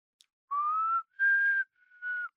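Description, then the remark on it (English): A person whistles a short tune of three sustained, clear notes, the first gliding upward, each separated by brief pauses. It is fairly loud, with no talking. “Can you not whistle?”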